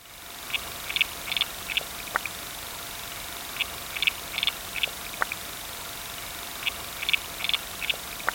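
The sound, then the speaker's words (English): Underwater calls of a water boatman: short, high, buzzy chirps in clusters of two or three, repeating irregularly over a steady background hiss, with a few sharp ticks between. No one speaks. “So I'm just thinking now I could play you the sound of a water boatman.”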